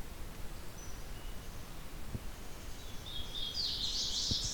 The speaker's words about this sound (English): scoping out locations to place the bioacoustic recorder, came across this song, which I didn't immediately recognize, but is another song of the Hooded Warbler.